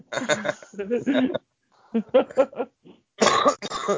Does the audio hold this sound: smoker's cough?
yes